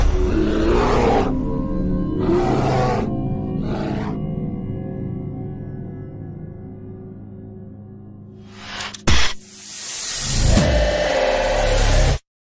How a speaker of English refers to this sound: It's a grizzly. Should we get out of here? No. We're gonna watch and listen.